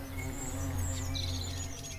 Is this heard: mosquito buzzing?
yes